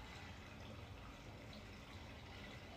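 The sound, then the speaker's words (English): Swimming pool water splashing and churning in a steady, continuous rush, heard near the pool in late September, even in loudness throughout, with no voices present. “It is a swimming pool and not a toilet flushing, I promise.”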